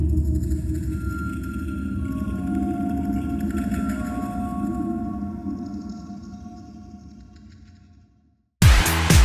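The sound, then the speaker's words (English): Low, wavering whale-like calls from nine elongated humanoid creatures standing behind a partition drone over a deep rumbling bed, with a few sustained tonal moans sliding in pitch, fading gradually before a brief silence and an abrupt burst of different sound. “Yes, making those whale-like sounds. Listen to them. Fluctuating.”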